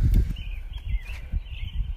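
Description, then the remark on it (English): Birds sing and chirp thinly through the background at 5 a.m. while heavy low rumbling and shuffling footsteps sit in front, with no one talking. “Listen to them birds, dude.”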